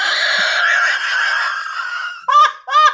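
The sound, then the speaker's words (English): A voice imitates an owl hoot: a long, strained, wavering call, then two short, sharp whoops in quick succession. It is loud, with no other talk. “That's an owl sound.”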